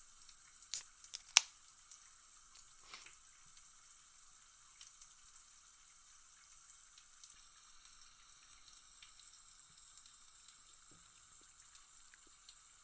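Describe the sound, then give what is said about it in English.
A shower runs steadily, giving an even, hissing spray that holds for the whole stretch, with a couple of sharp clicks near the start and no voices. “So, without further ado, let's jump into the shower and crack this one open.”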